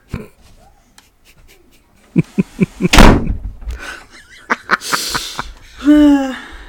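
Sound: door being shut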